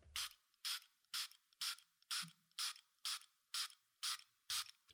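A homeopathic pump spray bottle is sprayed ten times under the tongue in a steady rhythm, each short hissing burst evenly spaced, with no talking.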